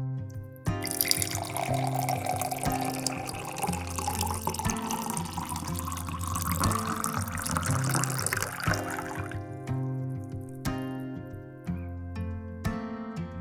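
Water is poured steadily into a glass held in a hand for about eight seconds, the splashing tone rising in pitch as it fills, with soft background music continuing underneath and after.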